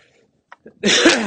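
A single loud, breathy sneeze-like snort bursts out after a couple of small clicks, a sharp explosive blast of air from a horse.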